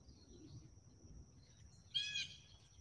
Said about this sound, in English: What are you feeling right now? What's coming through right now? Calm. Birds, nature.